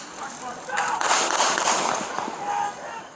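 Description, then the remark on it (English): A quick cluster of sharp gunshots crack out in rapid succession, sounding muffled, set against a steady hiss of background noise. The shots come from security video of police officer Rolf firing at Rayshard Brooks just after a taser was fired. “We see from the security video, Brooks sort of points back over his shoulder with his taser, and you can see an illumination from the taser right being fired. And then gunshots.”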